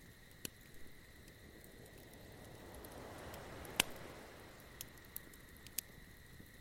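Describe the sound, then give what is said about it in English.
A fire crackles softly, with sharp scattered pops and snaps over a low steady hiss, no voices present. “Listening to the sound of the crackling fire.”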